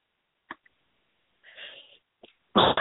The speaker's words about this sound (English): Sorry, I'm having just a coughing fit. I was really sick all night.